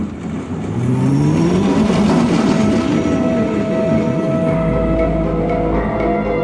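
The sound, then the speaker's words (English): A mining car rolls down metal tracks in a mine with a steady, loud rumble and rising whining squeals from the wheels, continuous for several seconds with no voices. “And sometimes if you're brave enough to go to the entrance, you can hear moaning and hear the mining car rolling down the tracks.”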